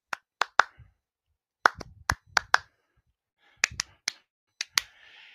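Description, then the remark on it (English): Sharp, loud slaps and claps land in short bursts of three or four with brief pauses between: a wrestler on one knee slapping the ring mat while the crowd claps along. Nobody speaks. “He drops to a knee and he starts slapping the mat, and the crowd follows suit.”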